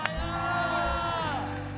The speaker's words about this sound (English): And then we have, oh, you're going to cheer for everyone.